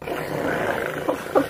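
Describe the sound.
Several voices make a low, rumbling, continuous purr-like growl for over a second, imitating the purr of a cat named Scribbles as it is petted, with a few brighter vocal bursts near the end.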